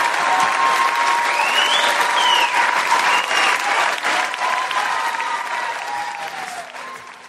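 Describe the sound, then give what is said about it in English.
Loud, sustained audience applause for a standing ovation, with dense clapping and some cheering, holding steady for several seconds before gradually tapering off. “All it takes is one guy to stand up for a standing ovation, even though he sat down.”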